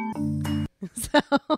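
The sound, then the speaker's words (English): Soft, bell-like instrumental tones ring out briefly in a lullaby-style instrumental version of a rock song, with no lyrics, then cut off as a voice begins speaking in short bursts. “No, it's all just music. …. These are the lullaby versions.”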